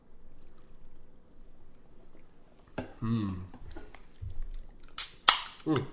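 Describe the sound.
A can of Beach Blonde Ale is cracked open: a sharp metallic snap with a quick burst of fizzing hiss near the end, following a brief voice and a soft click earlier on.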